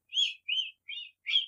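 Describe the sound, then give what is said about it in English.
A person imitates a cricket chirping: four short, high-pitched whistled chirps in a steady, evenly spaced rhythm, fairly loud, with no talking over them. “I used to be able to do the cricket sound.”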